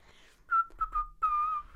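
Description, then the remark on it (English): Someone attempts to whistle: a few short, breathy, wavering notes that stop and start before settling into one longer, steadier tone, fairly quiet, with no talking. “And so he was like, can you just, like, try and whistle?”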